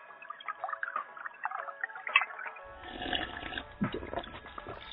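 A drink is poured into a glass, a light gurgling trickle that turns fuller and splashier partway through, with a low rumble underneath. No one speaks.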